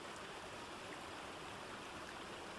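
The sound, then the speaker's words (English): A babbling stream flows steadily, its continuous bright rushing and trickling water filling the whole moment at an even, moderate level with no voices. “The sound of a babbling stream became audible.”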